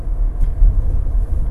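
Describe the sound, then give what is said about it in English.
A parked fire truck's heavy engine rumbles, a steady low-pitched drone with a slight surge partway through, no voices over it. “Ah, fire truck here. What's going on?”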